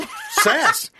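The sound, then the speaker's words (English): A person's voice imitates their part-husky dog 'talking back' with a short, warbling, whiny howl that rises and falls in pitch, fairly loud, lasting about a second. “But then also, he started doing a lot of just talking back.”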